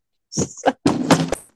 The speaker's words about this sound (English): No, my picture frame of my child fell.